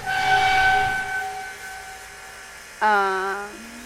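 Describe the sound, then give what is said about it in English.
Maneuvering engines being run through a test firing sequence fire and malfunction: a loud hissing blast with a steady whining tone fades away, then after a pause a sudden harsh groaning tone wavers, drops abruptly in pitch and trails off. “That sounds like the pistons ripped the door's hinges apart.”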